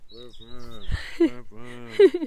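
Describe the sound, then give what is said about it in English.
A human voice mimics a wood pigeon's coo: a few low, hooting phrases with gliding pitch, delivered fairly loud in a short rhythmic sequence. “basically with a wood pigeon, you're listening out for...”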